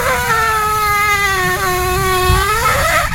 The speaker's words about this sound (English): The end of that is the best part, right? Where it's squeaking, squeaking, squeaking, then just goes bong, bong, bong. Again, the video called Waffle Poots, somebody recording their waffle maker as it makes squeaky toot noises.